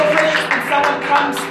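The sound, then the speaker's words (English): A crowd claps steadily, a dense, even patter of many hands that holds at a constant loudness throughout, with voices mixed underneath. The crowd is clapping for a young woman who has come forward to be prayed for. “Come on, just clap for this young lady.”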